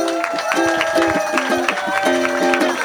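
An audience applauds the band steadily, with scattered clapping bursts and cheering over sustained tonal sounds, holding at a fairly even loudness throughout.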